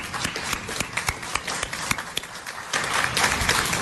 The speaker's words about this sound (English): Okay, and I think we give a round of applause to the people who've served our country.